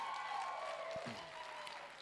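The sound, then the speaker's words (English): A church audience applauds a woman in a steady, continuous wash of clapping at moderate volume, with a sustained tonal hum running underneath and no voices. “Come on, church, let's give her a huge round of applause.”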